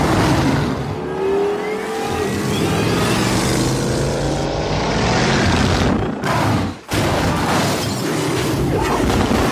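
The Tumbler, the armored Batmobile from Batman Begins, roars and accelerates hard around Gotham, its engine revving and climbing in pitch, with crashing booms and debris breaking around it and a brief sharp cut near the end.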